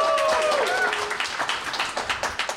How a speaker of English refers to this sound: And just to prove for the fact that there is a live audience, how about a round of applause for our guests today, everyone in the audience?